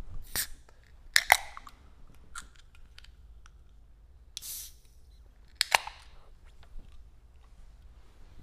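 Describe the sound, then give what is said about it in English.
Glasses clink together in a toast: a bright, ringing double clink, then another sharp chime a few seconds later, with faint ticks and rustles between and no talking. “Can we cheers? Yeah, we're going to do some cheers.”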